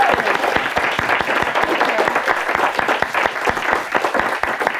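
A steady round of audience applause, many hands clapping in a dense, continuous patter at an even loudness for about five seconds, with no voices on top.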